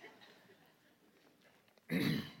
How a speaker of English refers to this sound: I hear you guys clearing your throat for me, but it's not working, okay?